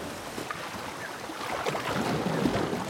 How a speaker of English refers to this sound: So once we've met him, he makes his way to a river. River water could help to clean his wounds.